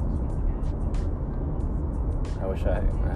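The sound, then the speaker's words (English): A steady road rumble of a car driving east through slow traffic, with a continuous low engine and tyre drone and what sounds like a faint, muffled voice mixed in. “Everyone's going slow and nobody wants to move over, and there's so much traffic going west, but I'm going east.”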